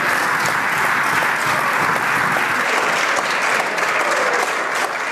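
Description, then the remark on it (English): Opposition members of parliament applaud loudly and steadily for the full five seconds as a member stands to vote against their own party, a dense, unbroken wash of clapping with no one speaking over it. “While the opposition were cheering you?”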